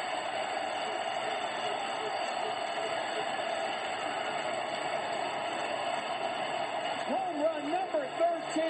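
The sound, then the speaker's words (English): A baseball stadium crowd at Busch Stadium cheers in a steady, loud, dense roar after Albert Pujols beats the Cubs, with a voice briefly rising above it near the end. “And this crowd is going crazy here at Busch Stadium.”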